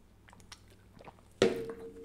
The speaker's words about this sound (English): Man, sip break.